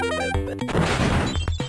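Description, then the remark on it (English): A loud cartoon-style crash of a paperboy crashing into a man using a jackhammer: a short run of ringing tones breaks into a burst of clattering, rattling noise, then a few last clanks ring out. There is no talking. “Those are this week's headlines, brought to you by my local paperboy who just crashed into a guy using a jackhammer.”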